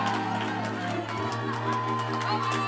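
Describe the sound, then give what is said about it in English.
An audience claps and shouts together in a dense, steady roar, with sharp claps scattered through the noise and sustained musical tones droning underneath. “Why don't you clap and shout until you feel total liberty in this house?”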